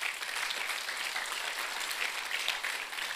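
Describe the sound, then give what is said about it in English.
Steady applause from an audience, many hands clapping together in a dense, continuous patter that holds at an even level for a few seconds without voices. “Come on, clap your hands.”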